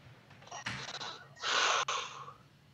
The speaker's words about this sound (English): Heavy breathing, heavy sighs. Not a quick answer. He's got to think about this one.